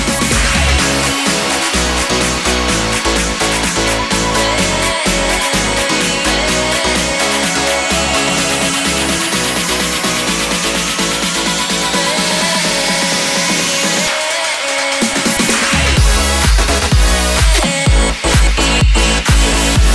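A loud electronic dance track with a female vocal, driven by a steady pounding beat and a rising synth sweep that builds, briefly drops its bass for a short break, then kicks back in.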